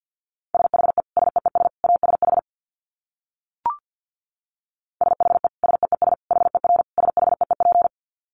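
Very fast Morse code at 50 words per minute: a steady mid-pitched tone keyed in rapid dits and dahs, two bursts split by a short silence with a single click between them.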